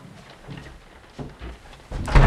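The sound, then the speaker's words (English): A drunk doctor knocks on a door: a few dull knocks, irregularly spaced, building to a louder, sharper burst of banging at the end. Nobody speaks. “who's that knocking?”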